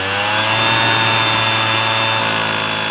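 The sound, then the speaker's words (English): A leaf blower used by gardeners roars steadily, a loud continuous motor whine with a rushing airy hiss that holds nearly constant throughout, with no voices. “First comes the leaf blowers, which are the bane of anyone who records a podcast at home, and in fact a nightmare to all sentient beings.”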